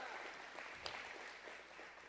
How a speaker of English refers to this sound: Give her a big clap. She did awesome last week.